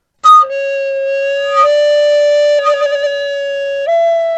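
A recorder plays a steady, breathy tone, starting with a brief high note before settling into long held notes that shift slightly in pitch. It is fairly loud, with no voices.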